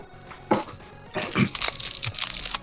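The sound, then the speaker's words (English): Crunching of hard candy: a sharp bite, a short pause, then a longer run of irregular crackly chewing, fairly loud, with no talking. “I'm gonna crunch on candy.”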